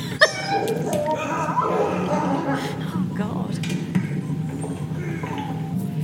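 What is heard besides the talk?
wolf howling and whimpering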